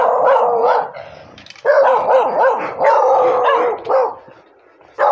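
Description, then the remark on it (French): Guard dogs bark loudly and persistently, with overlapping bursts of barking and yelping over about five seconds, briefly easing before a final sharp bark. “Ah là là, ça me fatigue. Les chiens de garde.”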